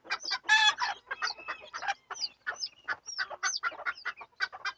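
Several chickens cluck and chatter in a busy, overlapping stream of short calls, with a few higher squawks mixed in and no talking.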